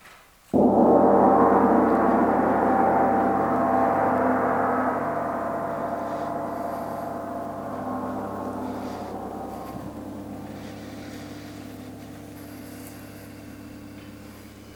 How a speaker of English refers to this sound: So with that said, I invite you as I sound the gong today to drop into 30 seconds of silence in love.